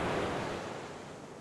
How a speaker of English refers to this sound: But God parted the Red Sea. On dry ground, the Israelites crossed. But as soon as the Egyptians began to cross, the walls of water rushed back together.